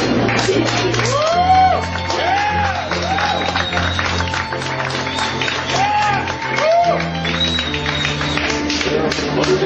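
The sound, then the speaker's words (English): Passengers in a New York train carriage clapping in a sustained round of applause for new passengers boarding, with scattered whoops and crowd voices mixed in over a low, steady rumble. “So please, will you all join me when the new passengers get on the train to give them a big round of applause?”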